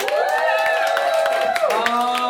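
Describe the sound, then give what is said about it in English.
An audience at a live show applauds and cheers. Dense clapping mixes with sustained shouts and whoops that hold steady and loud throughout, with no one speaking over it. “Give us a round of applause if this is your first time. Give me a shout out if you are coming back again.”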